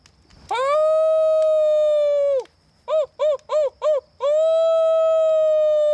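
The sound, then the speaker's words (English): Voices imitate wolf howls, baying at the moon: a long, steady, loud howl, then four quick rising-and-falling yips, followed by another sustained howl, without background talk. “Let's all bay at the moon. What? You know, howl like a wolf.”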